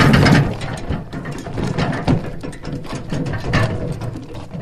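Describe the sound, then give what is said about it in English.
A wheelbarrow loaded with buckets of water is slowly pushed by a grade 11 learner along the main road at Mashau village, rolling with a steady, rattling clatter and rhythmic metallic clicks, a continuous mechanical grinding with no voices. “A grade 11 learner slowly pushes a wheelbarrow loaded with buckets of water to his home.”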